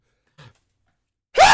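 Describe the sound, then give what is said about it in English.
A quick, faint intake of breath followed by silence, then a sudden, loud, explosive sneeze. No one speaks. “You can't cut that sneeze out.”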